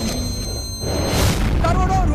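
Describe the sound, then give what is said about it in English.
A deep, loud explosion boom from a trailer for the film Singham Returns, the Singham sequel, swells in about a second in and rumbles on heavily, with faint voice-like tones riding over the low roar. “There's explosion.”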